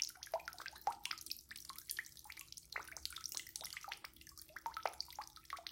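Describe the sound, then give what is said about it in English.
A little stream from springs falls down the sheer face of a wall: water trickles and drips steadily, with a quick, uneven patter of splashy drops over a soft continuous flow, moderately loud, with no voices. “A little stream escaped from the springs above, and leaving the main water, fell tinkling down the sheer face of the wall, pouring in silver drops like a fine curtain in front of the arched bay.”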